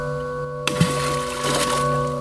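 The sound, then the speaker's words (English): A sudden heavy splash as a rock about the size of two fists, picked up off a bicycle path, is thrown into algae-covered swamp water, followed by about a second and a half of churning, spattering water over a steady low hum. “Gross, it splashed me.”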